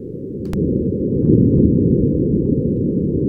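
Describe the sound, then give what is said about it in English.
Low, muffled wind rumble from the first sounds recorded on Mars, a steady dull roar that swells slightly after a brief click near the start, with no voices. “This is the first recorded sounds from Mars. Oh, from Mars. From Mars. A little bit of wind.”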